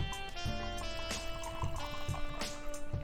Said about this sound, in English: Let's give this thing a little pour.